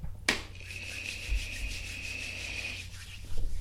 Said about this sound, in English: Yes, my hands are ashy, but I'm Birdman hand rubbing right now. I just finished washing dishes. No. I don't know if you can hear it.